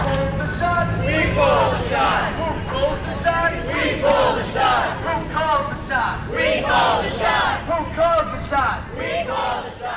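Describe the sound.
A large crowd of conservation activists at a rally chants and shouts together in loud, rhythmic bursts of voices, rising and falling over a steady roar of many people for the whole stretch.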